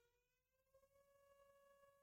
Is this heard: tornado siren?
yes